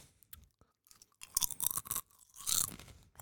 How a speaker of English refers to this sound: I'll just chew on crisps for comedy effect so you don't notice that, yeah, let's do this.